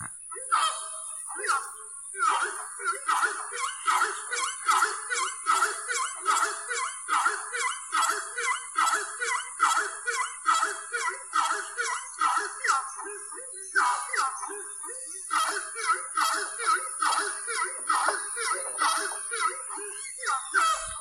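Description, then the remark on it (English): Horned screamer calls: a long, steady run of loud, harsh honking notes repeated in quick, pulsing succession with a wobbling, throaty quality, continuing for about twenty seconds with no talking. “These loud, abrasive calls, screams, are sometimes used as a first line of defense”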